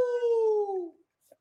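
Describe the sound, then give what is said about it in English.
A single drawn-out howl, loud, gliding slowly downward in pitch for about a second before fading; a human voice is imitating a wolf, howling for a fantasy football pick called the Wolf, who is playing against Chicago. “The Wolf is out there howling”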